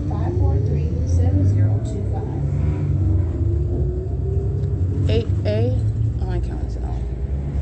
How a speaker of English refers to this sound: It is currently about 8:22 p.m. on the Route 61 bus. This is bus number 2362.